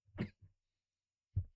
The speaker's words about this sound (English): Still got that cough. That cough is lingering.